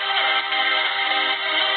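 A phone loudly plays electronic techno-style Game of Thrones theme music, a dense, steady wash of sustained synth tones with a thin, tinny quality, running unbroken with no talking over it.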